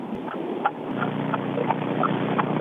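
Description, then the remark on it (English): A car engine, modified to make the car go faster, rumbles steadily, a dense, throaty drone with a rattling vibration running through it and a few faint clicks and taps over the top. “I have done some things to my car to make it go faster, which in turn make it vibrate like an 18-year-old little potty toy.”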